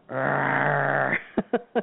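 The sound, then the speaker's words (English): A voice imitates a lioness roar: one long, rumbling growl lasting about a second, then three short, sharp grunting huffs in quick succession, fairly loud. “You know, that would be a great spot for the sound of a lioness, an audio, don't you think?”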